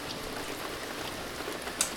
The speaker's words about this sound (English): a dark rain cloud sort of sprawls out directly over the fire in the thicket where you're standing, and rain starts to pour down on top of this, putting out the small brush fire